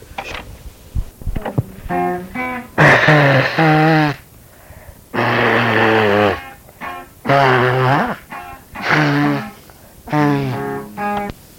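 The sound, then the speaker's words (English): A run of loud, honking nose blows by a man, each a sustained buzzy tone with wobbling pitch, separated by short pauses, with his brother plucking and strumming guitar notes underneath and between them. “A little backup for the nose blowing.”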